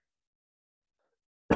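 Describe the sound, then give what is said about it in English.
Near-total silence, then one abrupt, loud cough bursts out right at the end, cut off sharply. “Sorry there for the cough there”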